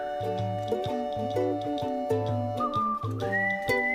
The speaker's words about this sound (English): I didn't know the whistle was coming. That's what I'm laughing at.